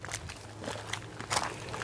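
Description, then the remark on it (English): Footsteps crunch steadily over a crushed granite trail in the Texas Hill Country that leads to the water's edge. Each step is a gritty, scraping burst, with a low steady hum running underneath and no talking. “It's this beautiful crushed granite trail, and it will take us all the way to the water's edge.”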